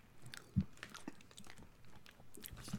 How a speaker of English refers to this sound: Yeah, yeah, you just ate a chip.